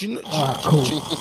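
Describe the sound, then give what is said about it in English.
A person voices a short, exaggerated cartoon-style snore, a buzzy, throaty rumble with a breathy hiss, fairly loud, lasting about a second. “I was doing a cartoonish snore noise.”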